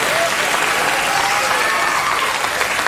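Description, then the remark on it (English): A crowd claps steadily throughout, a dense, even wash of applause at strong volume with no pauses and no voices standing out. “Your applause doesn't help here.”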